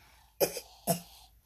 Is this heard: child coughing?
yes